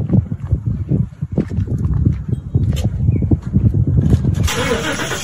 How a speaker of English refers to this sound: Did you hear the sound of his engine starting?